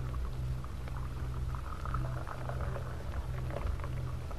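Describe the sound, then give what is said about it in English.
Coffee pours steadily into a cup for a few seconds, a soft continuous gurgling stream over a low background hum, fairly quiet, with no one speaking. “Shall I pour you coffee now?”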